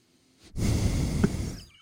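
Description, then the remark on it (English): A single heavy, noisy breath blasts straight into a microphone, a rough, rushing exhale lasting just over a second before trailing off. No one speaks. “There's probably, before I knew what I was doing, there's probably quite a bit of audio of us breathing and.”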